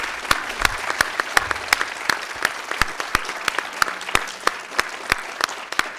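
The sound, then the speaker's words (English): A small audience applauds Marty Stratton, with crisp individual claps popping out irregularly over a soft wash of clapping for about six seconds at a steady, moderate level, and no voices. “Can I please get a huge round of applause for Marty Stratton?”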